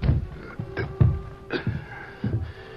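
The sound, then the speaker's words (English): Several hard knocks on the door of a home shortly after dark, landing in uneven pairs of thuds with a faint musical tone sustained beneath them. No one speaks. “Lem Decker was in his home when a rap sounded on the door.”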